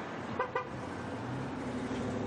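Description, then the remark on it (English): Two quick, close-together toots of a car horn cut through a steady hum of traffic and idling engines, then the street noise carries on without further honking. “Okay, what type of car is that?”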